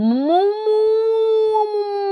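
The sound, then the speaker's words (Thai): A person imitates a cow, as a sound for agriculture, with one long, sustained moo that slides up in pitch at the start, then holds steady and loud for about two seconds. “นี่คือวัวเหร อ โอเคว ัวดิจิตอล”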